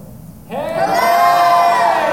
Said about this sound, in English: So I think everyone can hear you all if you're loud enough. So for everyone who's listening this week, why don't you scream hello?